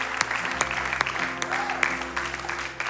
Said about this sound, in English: Come on, let's give them a great big hand of applause. They're doing the bravest, boldest, most courageous thing.